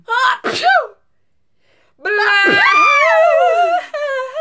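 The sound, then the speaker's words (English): Two short breathy vocal bursts, a pause, then a loud, long, exaggerated sneeze with a strongly voiced, wavering, sliding pitch that holds for about two seconds. “Bless you.”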